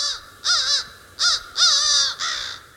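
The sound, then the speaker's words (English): Two crows caw in a series of five harsh, raspy calls, the first two run together, then spaced bursts, loud with no voices around them. “It took a long time to garner the trust of these two birds, and now we have this sort of reciprocity of respect.”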